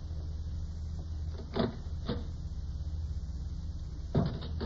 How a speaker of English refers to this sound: We'll see who it is. Just open that door a crack.